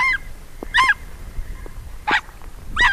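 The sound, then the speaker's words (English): An Ethiopian wolf in the Bale Mountains of Ethiopia yelps in four sharp, high, honking bursts spaced irregularly over a few seconds, each call loud and raspy with a nasal, goose-like tone, over a faint low background hum. “In addition to yelping at public radio reporters who venture too close to its den, the Ethiopian wolf is a creature of the day instead of the night”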